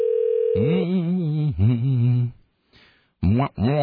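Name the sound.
telephone line ringing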